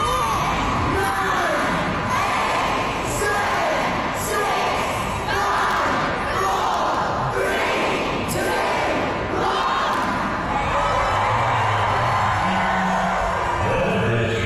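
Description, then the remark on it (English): A large crowd of Harry Potter fans at King's Cross Station in London on September 1st chants a countdown to 11 a.m. in loud, rhythmic bursts, then keeps shouting and cheering in a dense, continuous roar with no single voice standing out. “A bunch of Harry Potter fans from all over the world go to King's Cross Station and they count down until 11 a.m.”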